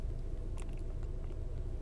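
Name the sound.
car interior rumble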